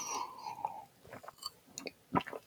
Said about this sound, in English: But yeah, let's take a sip of this.